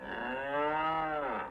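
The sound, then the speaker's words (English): A single cow moos in one long, steady call lasting over a second, harmonic and fairly loud, with no other sounds around it. “Like all other animals, cows are going to seek out water and vegetation in the desert.”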